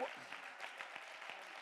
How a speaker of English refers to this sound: Clap your hands. Give him praise.